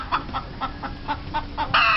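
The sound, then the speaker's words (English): A chicken, introduced as General Chicken, clucks in a quick, steady series of about eight short clucks, ending in a louder, drawn-out squawk. No one speaks. “You know, you kind of remind me of Super Cluck.”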